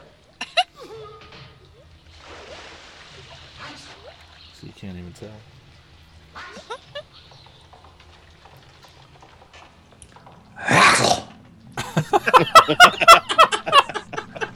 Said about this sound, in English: All that dripping water just sits right in.